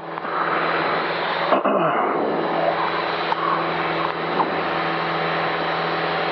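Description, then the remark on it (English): A steady, loud engine roar fills the whole recording, a small airplane building power on its takeoff run from Payson, rotating at 55, with a broad droning hum, a faint tonal whine and a brief dip in the sound partway through. “55, rotate. And we're off.”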